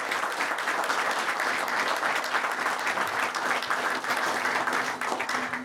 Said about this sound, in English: So please, round of applause.